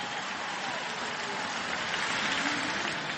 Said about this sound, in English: Teammate and designated hitter, Jim Thome. Big round of applause for Big Jim.